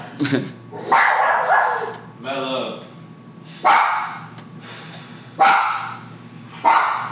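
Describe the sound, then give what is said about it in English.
A dog named Mellow barks loudly in several sharp, irregular bursts spaced a second or two apart, with a higher whining yelp between them and low background voices underneath. “Dogs is barking.”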